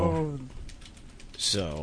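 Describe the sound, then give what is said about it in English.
A short burst of quick, light keyboard clicks between stretches of someone talking, as a message is typed into a chat room; the tapping is soft, a rapid irregular patter lasting under a second. “typing that message in the chat room.”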